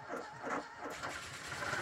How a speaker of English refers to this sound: Being notoriously unreliable, even with the right key, as Rolt struggled to turn over the ignition of the Vauxhall 11, with horns hooting, fists shaking, and distant police sirens growing ever nearer